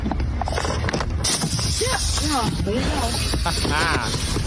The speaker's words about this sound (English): One more time on the tire stab. I love this.